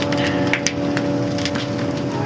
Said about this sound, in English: That's fire in the background crackling.